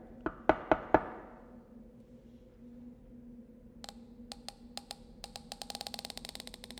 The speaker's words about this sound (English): There was no answer when I knocked, but I can try again.